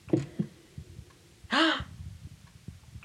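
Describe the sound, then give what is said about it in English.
A heartbeat sound effect played from a keyboard's SFX setting: dull, low thumps repeating at a steady pulse, briefly interrupted by a sharp, harsh rasping burst in the middle, with no talking. “A heartbeat. That heartbeat is horrifying.”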